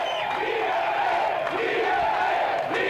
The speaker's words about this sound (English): Amid the shouts of Liberté, shock jock Jeff Filion, accused by the CRTC of making disparaging remarks about the mentally ill.